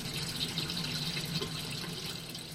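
Steady trickling and splashing water, a continuous flow of droplets falling into standing water with no pauses and no voices, as water that has filtered through the gravel of a bib lettuce bed drips back into a fish tank.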